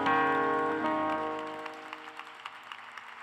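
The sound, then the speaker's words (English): A sustained keyboard chord rings and fades, then an audience's scattered, uneven clapping follows as a clap offering to the Lord, a series of sharp, moderately loud claps with no voices. “Give the Lord a very great, great, great clap offering.”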